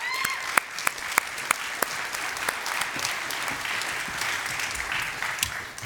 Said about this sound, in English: And everyone up here, let's give all of them a round of applause, too.